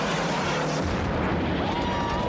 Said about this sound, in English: Yeah, plus they're trying to give him that tough guy line at the end, right before he shoots the goblin truck with the bazooka.